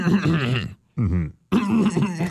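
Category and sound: vocal imitation, imitated throat clearing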